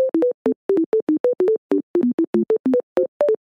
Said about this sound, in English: Skater, please play the beeps. If you don't mind, I'd appreciate it.